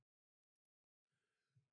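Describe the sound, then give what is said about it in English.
A few faint clicks, then a single breathy sneeze bursts out, a short rush of air that swells briefly near its end and cuts off. “God bless you. God bless you.”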